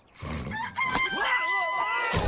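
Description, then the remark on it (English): A rooster crows loudly, a drawn-out rising and falling call, with brief clucking bursts at the start and end, in the trailer for the Walt Disney Pictures film Home on the Range. “Hey, chicken.”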